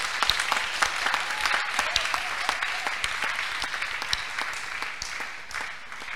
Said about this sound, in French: Applaudissez pour le Seigneur Jésus.